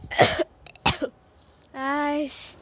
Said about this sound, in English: I feel so sick now that I'm coughing here.